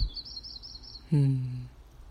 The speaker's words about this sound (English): In this morning time, the sun is rising, the birds singing. It is heaven on earth.